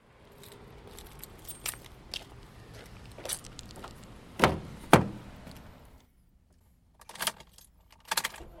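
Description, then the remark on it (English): Someone gets into a car on a warm Friday evening in Chicago as the sun dips lower: keys jangle, a couple of sharp door thumps land midway, then the surroundings go muffled and quiet, broken by more brief key rattles. “The sun is just starting to dip lower in the sky as I get into my car.”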